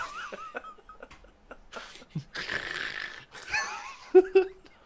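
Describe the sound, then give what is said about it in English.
A person with eyes closed imitates snoring with a few rough, breathy snorts and a short throaty growl at the end, fairly loud, with brief vocal noises around them. “Just eyes instantly closed and making snoring sounds.”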